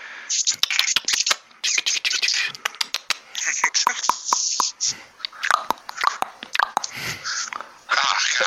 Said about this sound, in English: Chewing your peanut butter sandwich in your sleep.